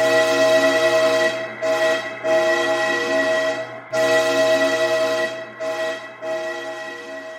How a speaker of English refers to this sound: She read a small sign above the door that read, "The Rails Tumbleweed Trolley." And as the train began to pick up speed, Celeste knew that her bad day had only just begun.